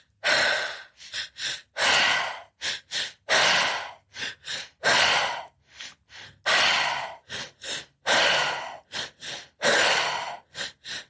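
Forceful, rapid breathing during a guided breathing exercise, with loud airy inhales and exhales following one another in a steady rhythm for several seconds. No one speaks.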